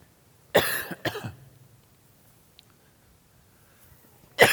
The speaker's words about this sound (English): I've not coughed at all. It's just now started.